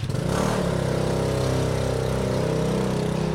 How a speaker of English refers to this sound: You can tell we're in an Italian city, all the mopeds.